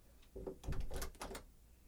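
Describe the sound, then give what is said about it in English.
A key rattles and clicks in a lock, followed by the clunk of a door being opened; a short burst of metallic scraping and knocks with no talking. “Russell key, Russell key. Got the key right here.”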